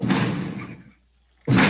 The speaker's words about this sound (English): What is happening? That is the fireworks going off in one.